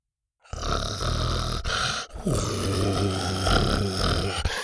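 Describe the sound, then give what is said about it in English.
A dog named Buck growls in a low, steady rumble for about four seconds while lowering his head, pausing briefly midway before the deep, raspy snarl resumes and holds until the end. “Buck was now growling and lowering his head.”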